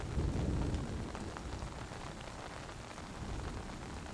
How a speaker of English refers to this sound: White noise is joined by the occasional rumble of thunder as lightning shows the vast size of the forest.